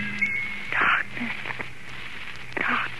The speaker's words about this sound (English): What do you hear, Mina? Lapping waves and rushing water.